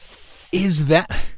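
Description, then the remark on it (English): A steady, airy hiss from a human voice imitates the snakes of Medusa's hair for about half a second, then breaks into a louder, voiced vocal sound. “Was that your hair? That's snakes.”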